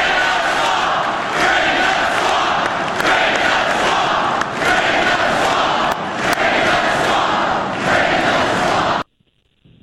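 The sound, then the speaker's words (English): A large crowd at a Trump political rally roars and cheers loudly and continuously, a dense wall of shouting voices with sharp peaks, for about nine seconds before cutting off abruptly to near silence. “Maybe Bernie sometimes on particular points, but man, Trump still got them just going crazy at those rallies.”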